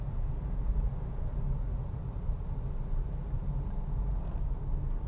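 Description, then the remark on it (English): Steady low rumble of road noise from inside a moving car, a constant droning hum with no breaks and no talking. “So the car in front of me, just brief play-by-play interruption.”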